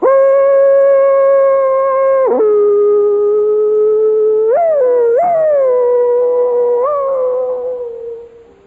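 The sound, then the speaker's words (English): A person hollers loudly and alone at a hollering contest, heard in the distance from the next arena, in long sustained calls, the voice jumping and whooping between pitches before the final note trails off. “And then off around in the distance somewhere, you know, in the next arena, is a great hollerer at work.”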